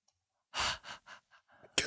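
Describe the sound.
A voice imitates a faint, creepy, breathy laugh: one long airy exhale followed by several shorter, fading huffs, ending with a sharp breath.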